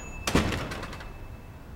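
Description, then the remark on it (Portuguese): A door is shoved open with a sudden, loud thump as a boy runs out through it, followed by a brief rattling that fades within a second. No one speaks, and a faint steady hum sits in the background. “Quando voltou a si, saiu correndo pela porta sem pensar 2 vezes.”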